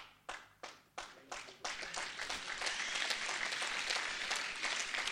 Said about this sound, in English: I pray that applause is for Christ and for what he's doing, please.